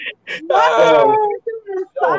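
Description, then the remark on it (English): A person lets out a loud, high-pitched scream lasting about a second, preceded by short breathy bursts and trailing off into brief strained vocal noises. “Stop screaming in the podcast.”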